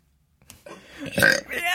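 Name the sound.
burp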